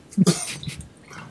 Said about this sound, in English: Why are you coughing? I don't know. I didn't say anything. I was just coughing.